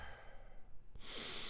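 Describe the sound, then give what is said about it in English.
During a deep-breathing practice, a quiet pause gives way to an airy rush of breath that swells and holds steady, the start of a slow, deep breath in through the nose and out through the mouth. No one speaks. “Now, speaking of cozy, y'all ready to do some deep breathing?”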